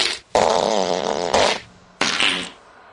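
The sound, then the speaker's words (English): A loud fart, a long sputtering blast followed by a shorter second burst after a brief pause, with no talking. “And I'm feeling very gassy.”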